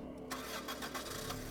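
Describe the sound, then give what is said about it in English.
A car engine cranks and catches, then settles into a steady, rumbling run as the car pulls away. It sounds fairly loud, with no voices. “He cackled into the open air as the car pulled away from the hell that was the Hotel del Salto.”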